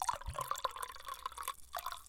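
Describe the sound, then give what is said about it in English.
A large amount of wine pouring into a glass, with a bright gurgling trickle and small dripping splashes over about two seconds, then the stream tapering off. “That's a lot of wine, though.”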